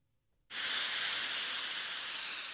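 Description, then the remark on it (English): After a brief silence, a loud, steady hiss of steam bursts on and holds continuously, bright and airy, with no voices. “No one thought I was hitting them with the steam there.”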